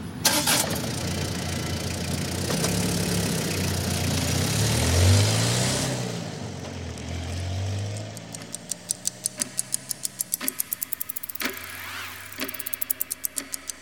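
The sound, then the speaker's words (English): A car engine starts up and rumbles loudly for several seconds before the car pulls away towards Hunter's Point and fades, leaving a quick, steady ticking. No one speaks. “Dax closes the trunk and gets into the driver's seat. They start driving towards Hunter's Point.”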